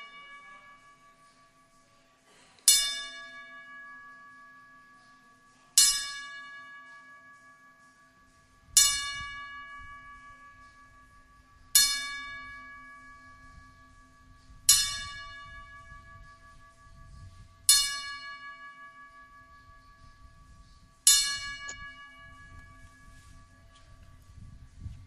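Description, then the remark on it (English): A church bell tolls seven times at slow, even intervals of about three seconds, each loud strike ringing out and fading into a low background rumble. No one speaks. “Yeah, that was 10 bells.”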